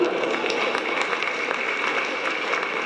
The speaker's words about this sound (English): Let's have one more applause